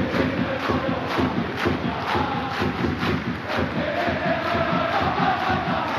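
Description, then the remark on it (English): A large crowd of fans chants together loudly and continuously in a strong accent, voices merging into a dense, rhythmic roar with regular pulses, chanting "if you hate the royal family, clap your hands". “But they eventually get the chant going pretty good.”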